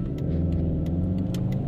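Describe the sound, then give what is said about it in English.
A car horn honks in one long, steady blast lasting the whole moment, a low buzzing tone layered over engine rumble, with a few faint ticks and no talking. “A little horn motivation there.”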